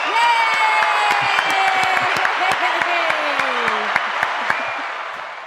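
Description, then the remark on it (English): An audience claps steadily with cheers and whoops rising over the applause, welcoming filmmakers Cary Solomon and Chuck Konzelman, makers of Nefarious, onto the show; a dense crowd sound that stays loud throughout and fades slightly at the end. “You know, getting a few applause every now and again is just too important to leave up to chance.”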